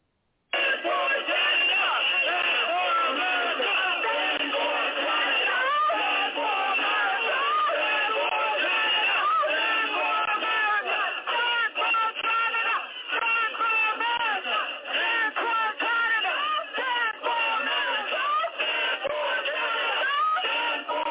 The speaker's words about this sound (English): This is in New York, the Brooklyn Bridge, where a large march took over the Brooklyn Bridge earlier this morning, waving Canadian flags and American flags, and this was the sights and sounds of that event earlier today.